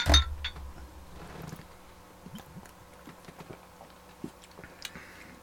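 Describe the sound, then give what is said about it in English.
Glasses of Armored XPA beer clink together once, sharply, followed by a few seconds of quiet sipping and swallowing with small scattered clicks and no talking. “Well, I'm going to try this. Armored XPA. Cheers, brothers.”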